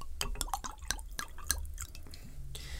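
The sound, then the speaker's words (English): Benedictine liqueur glugs and splashes into a mug, a quick run of wet drips and plops with a few bright clinks, steady for a few seconds with no one speaking. “So I'm going to pour you a Benedictine now.”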